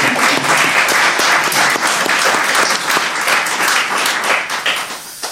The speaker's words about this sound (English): We'll give him a round of applause here, guys.